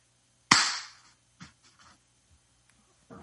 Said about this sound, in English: It also threw me that vampire clapped. I got to be honest. I know who it is. Because there was only one dummy that was clapping while we were clicking.